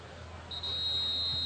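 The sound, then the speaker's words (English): At an American football game between the Tigers and Loveland, a referee's whistle sounds one long, steady, shrill blast before a free kick following a safety, starting about a third of the way in and holding to the end, over a low murmur of crowd noise. “And before we can get the kickoff, another whistle, and I believe we're going to have another procedure penalty against, or delay, actually, against Loveland.”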